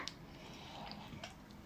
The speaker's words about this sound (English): Taking a sip.